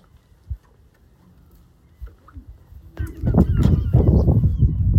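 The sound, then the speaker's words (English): A large bird sitting in a big nest, close by, lets out a run of loud, harsh goose-like honks in the final two seconds, following a few soft thumps and quiet background noise. “there's a big bird in that nest over there.”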